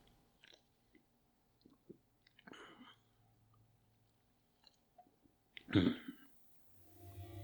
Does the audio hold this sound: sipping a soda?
yes